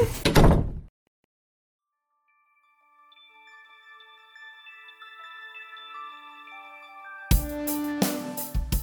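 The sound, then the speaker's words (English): A door slams shut with a loud, abrupt bang as someone leaves, followed by a moment of silence and then soft, sustained musical tones that swell into a louder passage. “I'm going to shut the door as I leave.”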